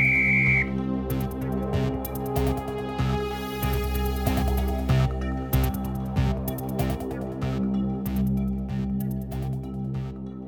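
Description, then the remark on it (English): One short, shrill whistle blast sounds at the very start, then gives way to steady background music with a rhythmic pulse. “Then Bob looked at Laughalina and blew his whistle.”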